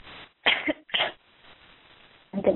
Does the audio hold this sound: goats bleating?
no